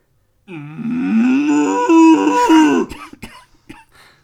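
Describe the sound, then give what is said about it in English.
A young man who lives near a farm of Friesian cows gives a long, loud imitation of a cow's moo, a sustained rising and falling bellow lasting over two seconds. It is followed by a few short breathy coughs or chuckles. “Would you like to give us your best moo, please?”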